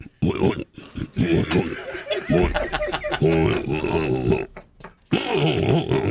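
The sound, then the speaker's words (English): A run of loud, guttural pig grunts and snorts, rising and falling in pitch, with brief pauses between bursts, from a pig named Clancy curled up at someone's feet. It sounds like a person's voice imitating the pig. “It's me pig. Your pig? Oi. He's curled up right down here at me feet.”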